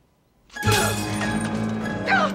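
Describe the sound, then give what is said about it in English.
Glass from a picture frame smashes as a woman slams the frame onto her own face, in one sudden, loud crash, followed by a couple of seconds of ringing, tinkling shards scattering and settling, with no talking. “Then she grabs the frame and slams it on her face.”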